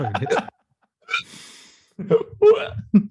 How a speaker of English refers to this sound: That is crazy, though. Like, I don't understand hiccups at all. It's just like, is your brain... I think it's like your brain's not like communicating with your fucking lungs or something.